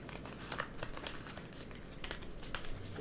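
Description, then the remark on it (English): Soft, continuous rustling and papery slapping of a deck of tarot cards being shuffled by hand, with a few sharper crisp flicks and no voices. “So I'm just gonna start with shuffling the deck.”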